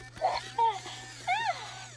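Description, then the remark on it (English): A baby girl lets out a few short, voiced burps after being fed milk, small croaky gulps with a slight rising and falling pitch, spaced over two seconds above a steady low hum. “Oh, that was a cute burp.”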